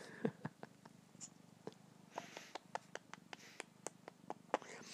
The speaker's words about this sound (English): He's purring and meowing. Yes. Nuzzling and mauling me. He's purring and meowing. Nuzzling and mauling me.